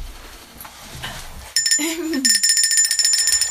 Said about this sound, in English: I think you have to hold it by the handle. Oh, do you want to ring the bell?